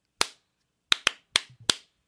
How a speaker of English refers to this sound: Let me start this sentence over. I'm going to do a little clap real quick.